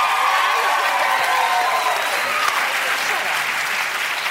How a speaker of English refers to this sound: Well, because they're clapping. They don't even know the whole story. But they don't need your permission to clap.